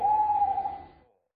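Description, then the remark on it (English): A single drawn-out hoot from a barred owl, lasting about a second, clear, then trailing off into silence. No voices or other sounds accompany it. “So bird number four is the barred bird.”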